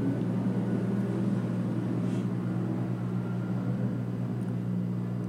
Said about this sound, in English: sorry, I don't know if you guys can hear it, it's a helicopter flying over. I'm gonna give it just a second.